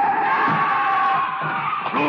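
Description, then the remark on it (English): A loud, sustained screech of car tires as a car tries to hit a man running out into the street, holding steady for about two seconds, a harsh high squeal with wavering tones, dominant, with faint rumbling underneath. “The car is trying to hit him.”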